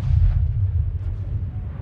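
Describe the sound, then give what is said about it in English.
A dense, continuous roar of battle in Northern Epirus: deep rumbling booms like explosions and heavy gunfire blend into a sustained low thunder that barely lets up, with no voices. “The air is alive with the sound of gunfire, the whiz of bullets, the thud of explosions.”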